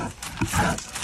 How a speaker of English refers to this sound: It's not like a little black bear. It's like a massive grizzly. Just the breathing is insane. It's insane.